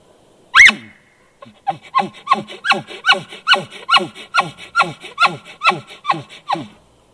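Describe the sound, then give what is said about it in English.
A single sharp, loud bark from an elk call, then a steady run of about a dozen grunting chuckles in quick rhythm, clear with no talking. The call imitates a bull elk. “You can also do a bark and then go into a chuckling sound, which I found a lot of bulls will actually respond to that, and that's this.”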